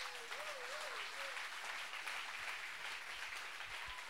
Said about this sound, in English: And this is a good time to clap.